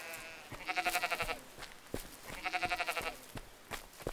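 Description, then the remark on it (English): Two wavering sheep bleats, each about a second long with a shaky, trembling quality, separated by a short pause, clear, with faint soft knocks in between and no talking. “We have to find the sheep.”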